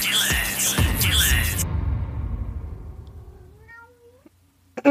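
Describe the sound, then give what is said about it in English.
A male cat meows loudly, two or three drawn-out yowls in quick succession, then the sound trails off into a fainter rising meow before a brief clatter at the end. “If you hear your random meows like that one, then...”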